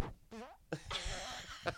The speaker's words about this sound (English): That was a real one. I don't want to fart.